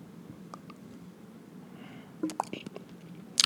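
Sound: computer mouse clicking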